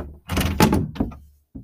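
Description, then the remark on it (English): A shop door is pushed shut quickly, a rattling rush ending in a solid thud, followed a moment later by a short sharp click as it is locked. No voices. “As they got in, he shut the door fast and locked it.”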